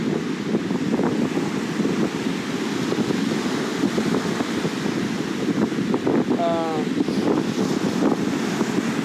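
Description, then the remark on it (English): Steady, loud wind rushes against the microphone over the churn of choppy ocean surf at the shore as the sun goes down, with a brief voice rising faintly near the end. “Those waves look hella wavy.”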